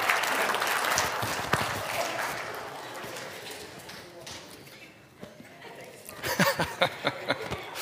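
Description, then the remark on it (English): A crowd claps in a dense, steady wash of applause that slowly fades, then a few louder, sharper bursts of clapping pick up again near the end. “round of applause.”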